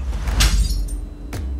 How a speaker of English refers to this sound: smashing dinner plates